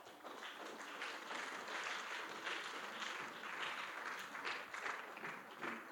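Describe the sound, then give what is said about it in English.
A crowd claps steadily for six seconds, a dense, even wash of many hands with slight swells, no voices standing out above it. “Rock of ages, clap for me.”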